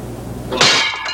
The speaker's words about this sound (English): That looks like real glass. I know. It looks dangerous as fuck. Because watch this. Watch. He smashes it here. Watch this kid right here, too. After the window breaks, this kid is just like, what the fuck is happening?